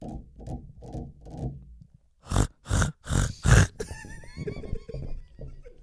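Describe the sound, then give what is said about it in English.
A human voice imitates a pig: a quick run of low, rhythmic grunts, then four loud, harsh snorts in a row, ending in more squealing, grunting noises, with no words. “You sound like a pig having sex.”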